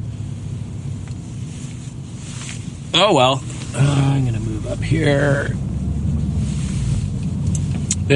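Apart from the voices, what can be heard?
car driving in traffic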